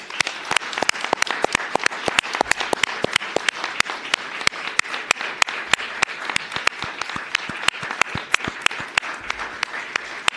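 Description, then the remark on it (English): A round of applause from a crowd congratulating recent retirees before commissioners, steady dense clapping with sharp individual claps standing out, sustained at an even level for about ten seconds with no talking. “Please join me in congratulating our recent retirees with a round of applause.”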